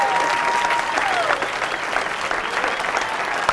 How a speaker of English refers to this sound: Let's clap it up for this man.